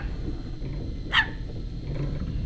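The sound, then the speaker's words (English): A single short, sharp bark from a male dog rises out of a low steady background rumble and ends at once. No one speaks. “is simply reminding you, he is indeed not a bitch.”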